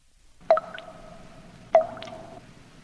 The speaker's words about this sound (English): I love the song of dripping blood.